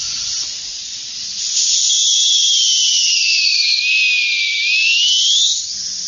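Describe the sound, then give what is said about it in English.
A multi-tone dog whistle with five or six tonalities is blown in one long breathy blast, its high airy hiss carrying a shrill tone that slides down in pitch and then climbs back up before stopping. “The dog whistle which I'm presenting and I'm having in my hands has a 5 or 6 tonalities.”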